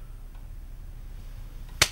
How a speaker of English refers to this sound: slap him.